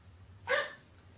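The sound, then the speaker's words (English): A dog lets out a single short, sharp bark, standing alone over a low background hum with no talking. “Your dog apparently did.”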